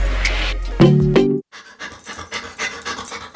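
A dog pants in quick, rhythmic breaths, with a short tonal whine or bark near the start, then steady huffing continuing to the end. It is presented as the sound of a therapy dog for a military veteran suffering from PTSD.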